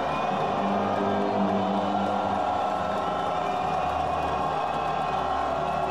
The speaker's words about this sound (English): Iranian fans could be heard booing their country's anthem while in the stands.